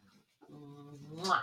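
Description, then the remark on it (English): A giant dog named Sammy lets out a short, drawn-out whimper, a steady high whine lasting about a second and ending in a sharper, breathy rise, with no one speaking. “Yes, we know him. He's a giant dog.”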